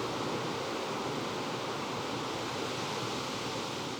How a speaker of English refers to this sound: Ocean. Actions available. Selected. Ocean. Pretty self-explanatory. That's the ocean sound.